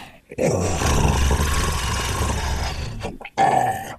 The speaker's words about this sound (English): The rest of you, you hear a low, guttural hiss behind you.